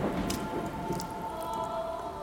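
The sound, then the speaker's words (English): Steady storm rain patters and hisses, with scattered heavier drips splashing over a continuous wash of falling water; no voices. “I kill the engine of the boat, and the storm drifts me towards the cavernous opening.”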